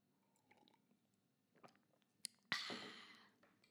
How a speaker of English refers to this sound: Take a slurp of tea here.